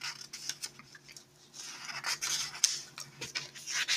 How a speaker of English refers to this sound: Excuse me here, just turning the page.